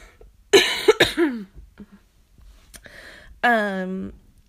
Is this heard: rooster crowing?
no